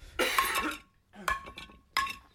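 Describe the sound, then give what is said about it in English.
A loose car brake rotor, no longer on a car, clanks three times, each hit a bright metallic strike that rings on with a sustained tone, the first longest and the last two shorter, spaced unevenly, with no talking. “That's a rotor that's no longer on a car, motherfuckers.”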